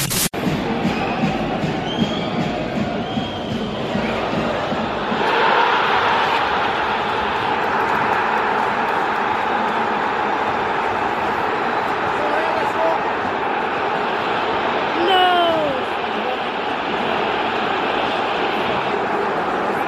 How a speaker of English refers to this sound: This is us equalising. It's not much happens. You can hear a bit of cheering, but it's probably worth it just for the payoff. And he's taken this from the opposite end of the ground, so the Leeds fans are fairly distant.